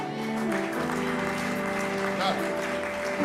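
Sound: audience clapping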